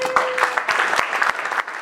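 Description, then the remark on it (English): Steady applause from a crowd for Sheriff Villanueva at Duke's, a surfer-themed beach restaurant in Malibu, dense clapping at a fairly loud, even level for a couple of seconds with no voices over it. “May I have your attention and please give a warm round of applause for our sheriff, Sheriff Villanueva.”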